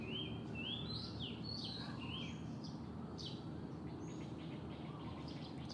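Several birds chirp and tweet in quick, high-pitched bursts over a steady low rumble of background noise, the calls overlapping throughout with no one speaking.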